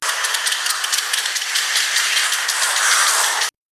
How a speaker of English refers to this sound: This is what oil birds sound like. The clicking noises are the echolocation calls.